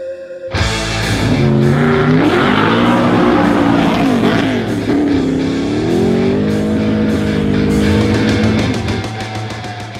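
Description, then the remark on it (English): A 1977 Pontiac car engine starts abruptly and runs loud, its deep harmonic rumble rising and falling as it revs, then settling into a steady idle before easing off near the end. “those car sounds courtesy of Jimmy Ford. You heard him earlier at the top of the show, and that is his 1977 Pontiac”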